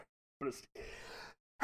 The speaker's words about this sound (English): Sorry, I had to sneeze. I did sneeze.